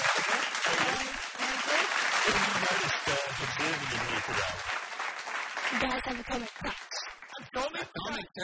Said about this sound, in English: Have you got some fake applause for yet another one of the Prime Minister's interrogators on Patterson Lake Primary School FM a few months ago?